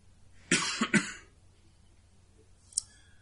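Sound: cough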